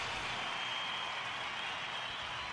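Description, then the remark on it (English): A steady wash of applause, many hands clapping together in a dense, hissy crackle that holds evenly for a couple of seconds with no voices over it. “Thank you for the applause, everybody.”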